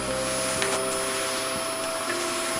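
A vacuum cleaner runs steadily, a loud continuous motor whine with a high-pitched tone, holding constant for the whole few seconds with no voices, used to clean a room for Diwali.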